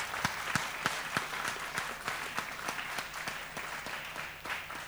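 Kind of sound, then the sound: crowd, audience clapping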